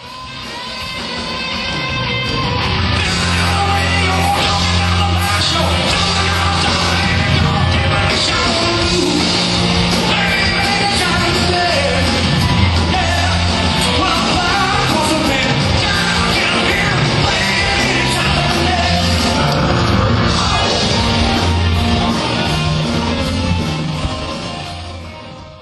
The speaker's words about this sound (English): And that was it for the night. Listen to the crowd and the fans.